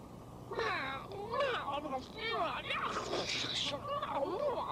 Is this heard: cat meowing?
yes